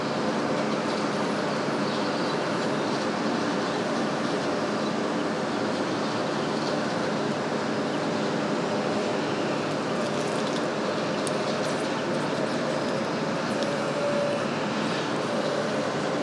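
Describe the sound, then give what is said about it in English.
Quiet outdoor ambience at an empty train station on a holiday, with no trains, people or cars: a steady, even wash of noise with a faint hum, no voices and no distinct events throughout. “It's a holiday, so there's nobody here at the train station.”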